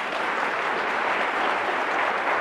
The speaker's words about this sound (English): I love that story. Yeah, you can applaud.